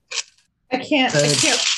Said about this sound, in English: I know what a D8 looks like. Hold on. Wait. No, that's a 10. Hold on. ASMR dice.